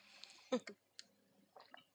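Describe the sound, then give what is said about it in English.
A quiet sip of water: a few soft wet clicks and a brief swallow-like gulp, with faint mouth noises and no talking. “Pause for I had to take a sip of water.”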